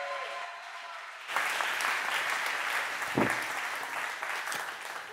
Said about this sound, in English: Can you guys give him a round of applause?